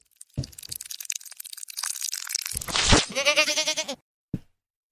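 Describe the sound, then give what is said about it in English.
A goat bleat played in reverse: scattered crackly noises swell into a loud, quavering, pulsing bleat that cuts off abruptly, then a single short click. No talking. “He wants to know if we can play the goat boost in reverse.”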